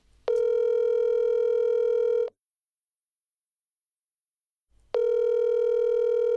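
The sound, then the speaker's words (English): An outgoing telephone ringing tone sounds twice, each ring a steady buzzing tone lasting about two seconds, separated by a long pause of silence, as a call is placed to a son-in-law. No one speaks. “All right, I am ringing up”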